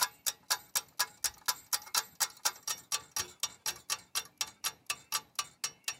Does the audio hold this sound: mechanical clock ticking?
yes